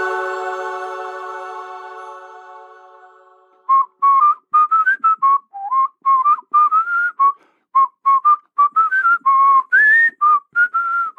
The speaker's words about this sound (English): is that you whistling in the dark here?